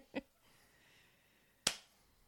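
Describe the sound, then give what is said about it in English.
Two sharp slaps of hands clapping together over mint leaves for a mint julep, the first softer and the second louder, about a second and a half apart, with quiet rustling between them. “Might as well slap the mint since we talked about it, right?”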